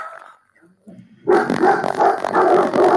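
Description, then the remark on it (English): A dog barks loudly and repeatedly in a rapid burst after a brief quiet stretch with faint low sounds; the barking fills the second half. “The dog's barking.”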